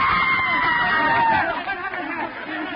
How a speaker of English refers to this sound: Others had seen it, too. A woman in the audience screamed.